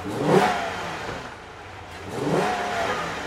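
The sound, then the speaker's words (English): The V8 engine of a black 340-horsepower Dodge Charger muscle car with Indiana plates revs in two loud, rising bursts about two seconds apart in downtown Pristina, with a steady rumbling idle between them and no talking. “A black 340 horsepower V8 Dodge Charger with Indiana plates and an American flag bumper sticker.”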